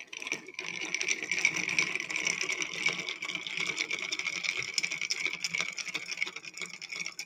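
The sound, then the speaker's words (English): Ice in a mixing glass, stirred with a cocktail bar spoon, makes a steady, rapid, bright clinking and rattling that runs evenly for several seconds, with no one speaking. “And then I'm going to use a spoon here, a cocktail, bar spoon, cocktail stirrer.”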